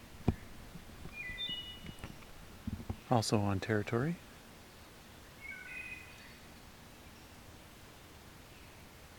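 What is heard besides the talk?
wood thrush singing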